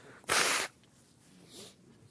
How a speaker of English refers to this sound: I'm going to have to blow my nose a lot today.